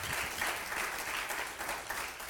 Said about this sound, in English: Give a round of applause to him because he is worthy to be praised.